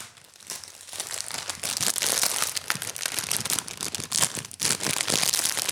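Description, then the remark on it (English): A bag of chips crinkles and rustles continuously as chips are added to a sandwich with pickles, with dense bursts of sharp, crackling plastic noise that rise after a soft start and stay fairly loud throughout, with no one talking. “These are the chips that we tried last time.”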